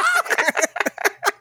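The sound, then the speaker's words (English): A person's voice imitates a hen laying an egg, with a quick series of choppy, rising clucks and squawks that ends in a final drawn-out cackle, loud. “one of the servers gets so stressed they lay an egg.”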